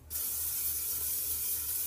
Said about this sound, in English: So we're gonna come over here, get a metal bowl. A big metal bowl. We're gonna get some baking spray. This is just non-stick cooking spray, extra virgin olive oil.